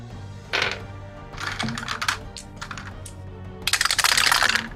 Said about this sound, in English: Roll them dice.